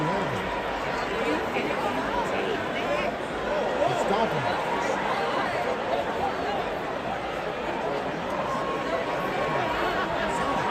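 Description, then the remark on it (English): A dense crowd roars and shouts continuously, cheering as a man is stomped in a fight, many overlapping voices blending into a loud, steady wall of cheering and hubbub with no pauses throughout. “They are stomping the shit out of this guy. And they're cheering.”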